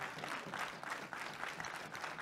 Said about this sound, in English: Give the Lord a hand clap of praise if you will.